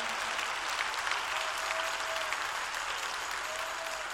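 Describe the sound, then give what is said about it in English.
An audience claps hands and praises the Lord in a dense, steady burst of applause that stays loud and sustained throughout, with faint voices mixed underneath. “If you are a survivor, clap your hands and praise the Lord.”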